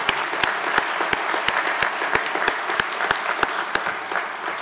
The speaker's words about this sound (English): Again, would you praise God? We clap here a little bit once in a while.